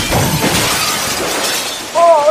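A burst of glass shattering, a bright, noisy crash with scattering debris that fades over a second or two, followed by a short vocal exclamation at the end.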